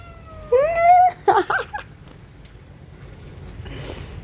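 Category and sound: animal, cat meowing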